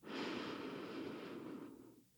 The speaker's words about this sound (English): And we'll take one last breath here, breathing in